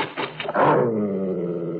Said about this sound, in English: It's all right, honey. It's only a dog, I think. I'm afraid my Algernon scared off your cat. He didn't mean to. Algernon loves cats. He's very affectionate, but he just doesn't realize how big he is.